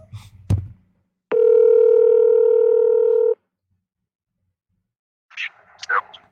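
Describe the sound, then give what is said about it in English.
A single steady ringback tone of an outgoing phone call to a friend buzzes for about two seconds after a brief click, then silence, followed by a faint, tinny voice as if through a phone line. “Hopefully you guys can hear this call.”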